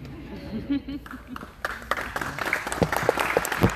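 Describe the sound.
A voice speaks briefly, then audience applause breaks out in response to the first answer at a forum, a dense crackle of many hands clapping that swells and grows louder through the rest of the moment.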